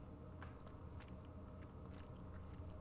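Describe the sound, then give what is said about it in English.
A woman chewing food: steady chewing with moist crunches and small bites repeating irregularly, no one speaking over it, against a faint low room rumble. “Trying to finish chewing so that you don't come after me.”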